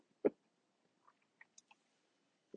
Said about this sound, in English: I'm gonna sip a little coffee though.